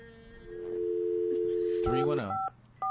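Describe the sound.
A steady phone dial tone hums, then a couple of short, clear keypad beeps follow in quick succession as a phone number is dialed, with a brief burst of muffled voice or handling noise just before them.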